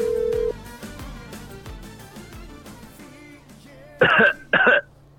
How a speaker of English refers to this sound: I'm pretty COVID-y. You hear that COVID cough?